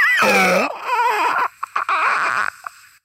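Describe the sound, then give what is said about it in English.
A man's voice imitates a monster-movie creature: a loud, shrill wailing screech, then warbling, gurgling growls broken by a few short coughing bursts, alone. “how come I'm not doing monster movie noises? Check this out.”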